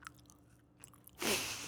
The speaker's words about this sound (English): You know, yeah, I know right now you're covering up the granola that you're eating so we don't hear it in your, there you go.